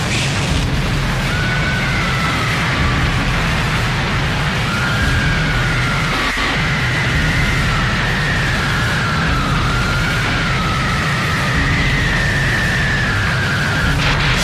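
Harsh, distorted industrial electronic music plays at a steady high volume, with a dense wall of rumbling noise and a wavering, whining synth tone gliding on top throughout.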